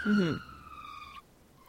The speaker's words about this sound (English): Sorry, I was just pausing for that ambulance to go past.